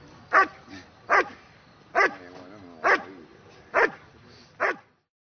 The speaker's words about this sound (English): When the dog gets to the helper, who's in the blind, his job is just to bark at the helper and not bite him.